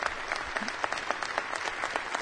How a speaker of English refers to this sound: Well, both sides are clapping for him.